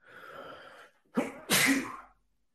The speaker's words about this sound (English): We have been going, and I have to sneeze. Oh, no.